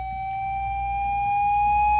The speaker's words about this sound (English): And so there are all these dog things, like, if your dog won't stop barking, you can hit this one. It's a whistle to make your dog stop.